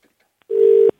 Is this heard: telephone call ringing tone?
yes